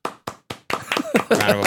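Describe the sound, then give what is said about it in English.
Three sharp, evenly spaced claps lead into a louder, denser burst of audience applause welcoming a guest, with voices rising over the clapping toward the end. “Round of applause.”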